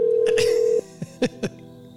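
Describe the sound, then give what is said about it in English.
A steady telephone ringback tone holds for under a second, then cuts off into near quiet broken only by a few short, soft noises. No one answers. “How many more rings do we give them?”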